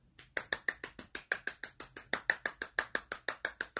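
A single person claps for herself, steadily and quickly, about twenty sharp, bright claps in an even rhythm with no voices, holding a fairly constant moderate loudness throughout.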